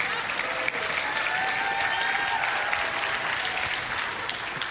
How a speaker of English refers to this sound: And they start clapping and the rest of the family picks up.